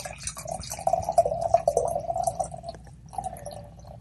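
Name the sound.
beer being poured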